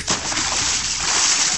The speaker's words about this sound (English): That's the best Splash sound bite I can find right there.